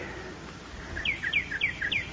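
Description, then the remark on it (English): A bird chirps a quick run of high, downward-sliding notes, roughly seven or eight short tweets in a lively, uneven rhythm over a faint background hiss, with no one talking. “Gee, she frightened the bird away.”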